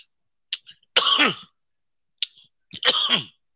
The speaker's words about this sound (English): So some of us and the guests do smoke. So if you hear me cough, it's because I didn't hit some good ass weed. There we go. That's a good cough. We 420. This ain't COVID cough, no.